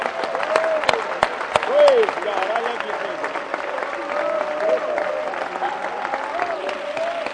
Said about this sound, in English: Let's give the Lord a hand clap. Praise God.